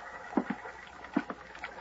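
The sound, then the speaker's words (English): Soft water lapping in gentle, irregular pulses against a couple of beat-up boats tied to a little ramshackle pier early in the morning, with a few low hollow knocks standing out over a quiet background. No one speaks. “It was a ramshackle affair with a couple of beat-up boats tied to it”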